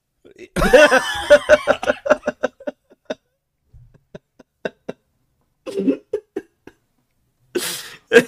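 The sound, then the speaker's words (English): A person erupts in a harsh, sputtering choking fit, followed by a string of short coughs and gasps that trail off into scattered, quieter hacks. “Just choke.”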